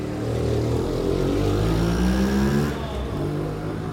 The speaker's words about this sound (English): My eyes were brought back to the street by the urgent, demanding roar of a scooter.